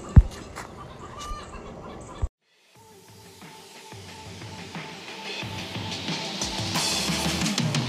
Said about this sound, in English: The chickens are distracting me.